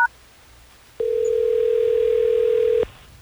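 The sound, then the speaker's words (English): A telephone ringback tone as radio station Hot 101.5 places a call: one steady, clear electronic ring lasting about two seconds, heard through the line, with no one talking. “Are you ready for us to get her on the phone?”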